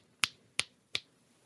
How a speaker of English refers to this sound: Clicking his fingers. Clicking his fingers at me, right? And he's like this, point there, yeah.